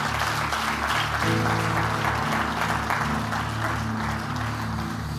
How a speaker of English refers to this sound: Let me appreciate the teaching of the Word of the Lord. Would you clap your hands and thank God for it?